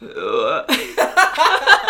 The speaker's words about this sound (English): I feel like I need to burp and hiccup at the same time, and it's so weird because it's like one's pulling and one's pushing. Because the hiccup pulls in and the burp wants to go out.